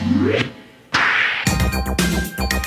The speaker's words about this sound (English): Whip at the end.